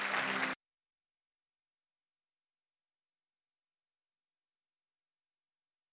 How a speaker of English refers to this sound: Come on, give the Lord a great clap offering this morning. Amen.